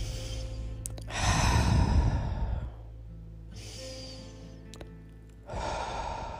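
Slow, deep breaths drawn in and released during a breathing exercise, with no talking: a long airy inhale and exhale, a pause, then another breath, in an unhurried rhythm.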